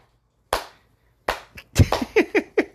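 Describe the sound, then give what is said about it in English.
Hand clapping: two slow, separate claps, then a quicker run of about half a dozen sharp claps, moderately loud with no talking. “Now, the whole significance of me clapping like a prick comes from The Adventures of Ford Fairlane.”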